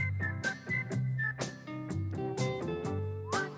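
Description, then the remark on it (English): Two hosts of the Joe Beaver Show on 1240 Joe Radio whistle a short, bright melody of quick notes and a rising slide. The whistling rides over a loud musical backing with a steady drumbeat. “Guys, whistle along.”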